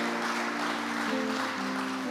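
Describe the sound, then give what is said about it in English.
A crowd of people claps steadily for their pastor in a dense, continuous wash of applause, while sustained keyboard chords hold underneath and shift once partway through. “Please clap your hands for him wherever he is.”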